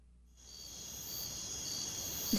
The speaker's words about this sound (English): Crickets.